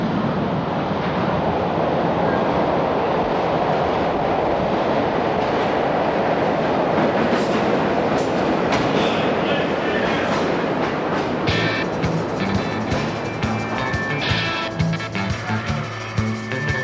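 An underground train roars through a station, a loud, steady rumbling rush filling the space, with high metallic squeals and whining tones rising over the noise in the final seconds.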